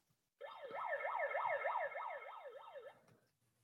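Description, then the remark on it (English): A loud megaphone siren wails in rapid up-and-down sweeps, about nine quick cycles with a buzzy, amplified tone, running for a couple of seconds before cutting off abruptly. “And then I throw that siren on and it like, where's it at?”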